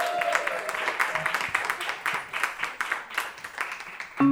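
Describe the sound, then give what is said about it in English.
A crowd applauds steadily, dense overlapping claps forming a bright, continuous patter at fairly even loudness throughout, with a brief murmur of voices beneath. “All right, so at Hell Has 3 Letters, thank you very much, and a round of applause thank for you.”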